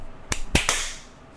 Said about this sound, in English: And then let's clap. One, two.